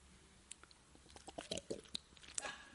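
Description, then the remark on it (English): Someone takes a sip of a drink, with a few faint, wet mouth clicks and a soft slurp scattered over a couple of seconds, no talking. “Just thought I'd take a sip on that one.”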